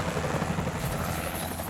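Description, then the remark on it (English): Helicopter blades over Atlantic City thump in a steady, rapid rhythm over a dense, continuous engine roar, loud throughout, with no voices present. “Helicopter blades, camera flashes, boats and engines, and the rush of activity swarm Atlantic City in the aftermath of the demonic incursion.”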